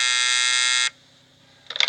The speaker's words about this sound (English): I'm telling you, any day now, any hour, any minute, this phone is going to ring.